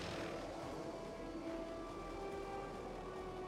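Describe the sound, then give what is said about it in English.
A steady mechanical roar with a low rumble and faint whining tones as a helicopter takes off from a police building downtown, continuous throughout with no voices. “That's actually from the actual police building downtown, that helicopter taking off.”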